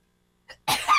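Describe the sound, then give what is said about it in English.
A single loud sneeze caused by allergies to Bradford pear trees: a quick sharp intake of breath, then an explosive burst that trails off briefly. No other sounds or voices. “Bless you.”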